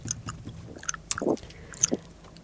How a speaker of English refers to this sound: Are you chewing? Yeah. Have you still got a cup in your mouth? No.